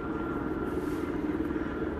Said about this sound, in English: Yeah, there's the helicopter again. Very curious. Very curious. It's not often you have the honor of a helicopter, let alone three helicopters, flying over your house.